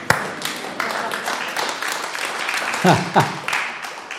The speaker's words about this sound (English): I know, you go to some churches and they never stop clapping. It's just happening. Praise goes throughout the teaching.